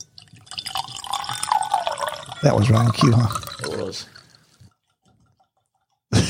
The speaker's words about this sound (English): That sounds like a real long pour with our sound bite, and you actually doing it. All right, good deal, man. This is, MGP. That's out of Indiana.